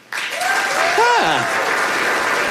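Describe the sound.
A scattered round of audience clapping at Alex Edelman's comedy piece, from those who have heard of Coco the Gorilla, starts abruptly and holds steady, with a voice rising and falling in pitch, like a whoop or call, cutting through the applause midway.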